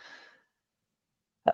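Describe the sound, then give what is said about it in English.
A soft, breathy intake of air, then a brief pause before one sharp, loud sneeze bursts out. No one speaks. “Bless you, my child.”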